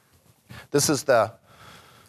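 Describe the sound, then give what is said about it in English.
An audience member yawns audibly during a talk on Minneapolis trees, a breathy intake giving way to a drawn-out voiced groan lasting under a second, fairly loud. “I heard a yawn.”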